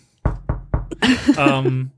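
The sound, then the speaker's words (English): Three quick, evenly spaced knuckle raps on wood, fairly loud, followed right after by a person talking. “I'm knocking on the wood though.”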